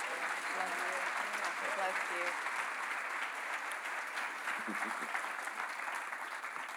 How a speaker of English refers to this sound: Would you all give her a hand?